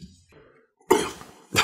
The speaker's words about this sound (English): I think we've all coughed a little bit except for Dylan.